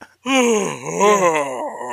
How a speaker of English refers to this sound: Our character yawns, I believe. And I'm like, that's not what my yawn sounds like. That's true. You went for a deep, manly yawn.